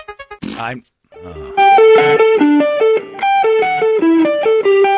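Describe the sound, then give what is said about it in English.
Buzzy, pitch-corrected fart noises play a loud rock melody in steady stepped notes, after a few short sputtering blasts at the start. “So it's auto-tuned farts.”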